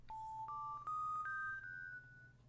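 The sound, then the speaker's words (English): An electronic 'pay attention' chime signalling significant information: four clear, steady tones stepping upward in pitch, each held briefly and slightly overlapping, played alone against a low steady hum. “And that tone tells you that this is significant information as opposed to some of the bonkers nonsense that the others are saying.”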